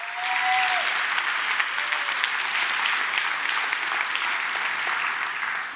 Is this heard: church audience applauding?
yes